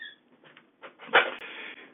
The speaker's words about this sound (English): Can you be quiet, dog? Lord, have mercy. He want to get on the Bible study call.